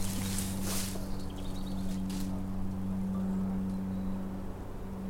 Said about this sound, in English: Go away, plane. That's a bit... There's always some man-made noise.